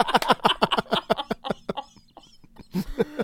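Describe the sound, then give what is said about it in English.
A voice imitates a pigeon with a fast, rhythmic run of throaty clucking coos, trailing off into scattered sputters before one last loud burst. Fairly loud, with no other sounds. “Fucking doves. My pigeon. The pigeon.”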